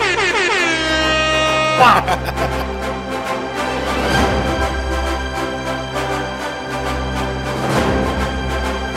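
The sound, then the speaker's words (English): Loud, blaring air horn blasts, stacked and repeated in rapid bursts that fill the whole stretch with a brassy, sustained honking, swelling again every couple of seconds. “Throw yourself some air horns out there.”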